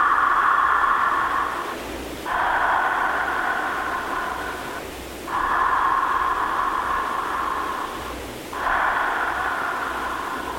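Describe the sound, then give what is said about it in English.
Continuous, wave-like breathing: a steady airy hiss that swells through about four long cycles, each breath flowing into the next with only a brief dip between them. No talking. “I always tell people that what it sounds like, to give them an idea, it's like a wave.”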